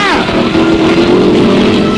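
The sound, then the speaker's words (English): A police squad car's engine roars loudly and steadily for about two seconds as the pedal is floored, a low, rough droning rumble with a brief falling whine at the very start. “Yeah, you hit the floor, boys, with that pedal as you go screaming on duty.”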